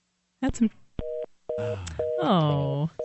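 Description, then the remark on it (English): A series of short, steady electronic beeps like Morse code over a telephone line from a robot call, repeating at regular intervals, with a person talking over and between the tones. “It's Morse code. It's a robot calling Free Talk Live.”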